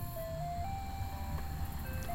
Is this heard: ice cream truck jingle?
yes